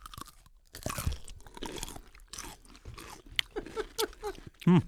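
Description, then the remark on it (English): A crisp crunch of two people biting into pickles together near the microphone, followed by several seconds of wet, loud chewing and smacking, with no talking. “This is one we like to take a little bite near the mic.”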